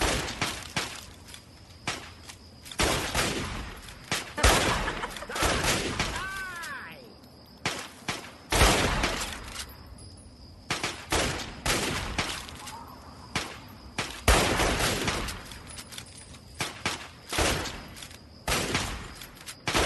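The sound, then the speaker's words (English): Rapid gunfire crackles in dense, irregular bursts for the whole stretch, dozens of loud, sharp shots clustered close together with only brief gaps, set against a busy, noisy background. “All right, that's apparently enough shooting for them.”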